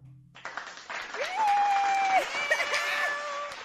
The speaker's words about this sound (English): Whoop, whoop, whoop. What sound effect can I put for that? Applause.